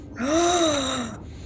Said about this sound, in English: Audible gasp.